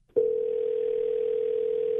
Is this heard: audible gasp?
no